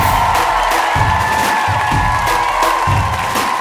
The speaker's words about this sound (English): Clap it up for your wonderful host.